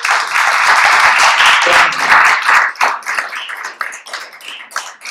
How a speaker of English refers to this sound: let's give them a hand clap again for investing in Milwaukee.